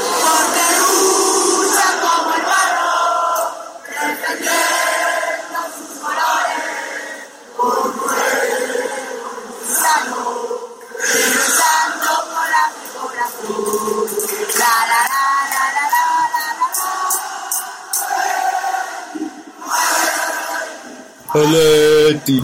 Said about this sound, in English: And here's some little singing from the metro station after the game.